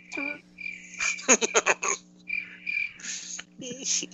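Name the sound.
crickets chirping sound effect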